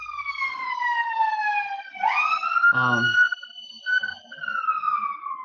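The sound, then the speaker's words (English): A loud emergency siren wails as it passes right by a home on a main avenue into a city, its pitch sliding down and then sweeping back up, with a brief burst of voice mixed in partway through. “Do you hear the siren too?”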